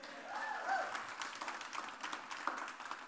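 An audience breaks into steady, dense applause that holds for about three seconds, with a few brief whistles and scattered crowd voices mixed into the clapping early on.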